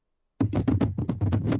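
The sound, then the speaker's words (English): Foley of a chair being thrown: after a brief silence, a rapid run of clattering wooden knocks and thuds tumbles along at a loud, uneven rhythm, with no voices present. “That was me throwing a chair.”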